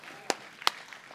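Two sharp, crisp hand claps about a third of a second apart, standing out against a quiet background murmur rather than a full round of applause.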